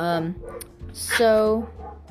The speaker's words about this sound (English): Oh, can you hear the dogs barking? They stopped. Okay. We have two dogs in the backyard, and they will bark. You can try to hear them.